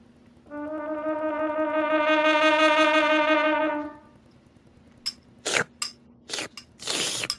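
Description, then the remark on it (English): A sustained buzzy tone gives way to a quick run of loud, noisy slurps and gulps, several short bursts in a row, as a child hurriedly eats soup at supper. “slow down. You'll choke on that soup.”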